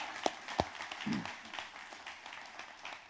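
An audience applauding, a steady crackle of many hands with a few sharp louder claps near the start and a brief voiced cheer rising out of the crowd noise.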